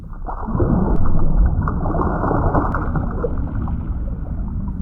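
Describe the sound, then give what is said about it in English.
A submarine, the Monkey Knots vending machine turned into a submarine, moving underwater: a loud, steady, muffled rumble with low churning and gurgling water that swells slightly early on and then holds, with no voices. “I didn't know the Monkey Knots vending machine turned into a submarine.”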